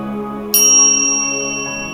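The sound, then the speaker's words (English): A meditation bell is struck once to begin a meditation practice, its bright shimmering tone ringing out and slowly fading over a steady low sustained drone that begins before the strike. “You will hear a bell and then we'll move into our meditation practice.”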